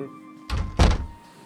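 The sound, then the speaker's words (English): A door is opened with a dull clunk followed moments later by a heavier thunk, against a faint steady hum and no voices. “could you open the door for us, dear?”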